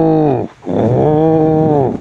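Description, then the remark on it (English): A voice imitates a cow's moo, growled and distorted like death-metal vocals: two loud, sustained low moos, the first short, the second longer and drawn out, with no other talk. “I think a cow would lend itself very well to death metal. With a bit of distortion over the top.”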